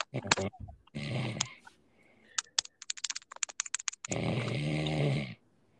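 human body sound, person snoring

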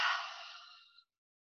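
human body sound, yawn

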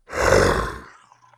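animal, tiger roaring

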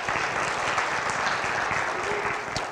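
crowd, round of applause

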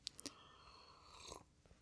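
food or drink, slurping coffee

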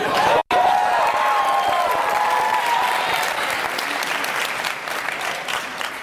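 crowd, audience applause

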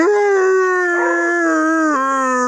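animal, beagle howling

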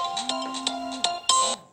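signal or alarm, phone ringing

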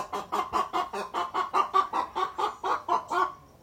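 bird, rooster clucking

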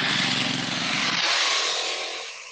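vehicle, motorcycles passing by

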